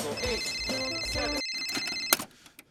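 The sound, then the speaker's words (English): A telephone rings with a steady, high electronic trill for about two seconds over busy background sound, then cuts off with a sharp click into near silence. “I was in the middle of my Billy Blank's Tai Bo workout when the phone rang.”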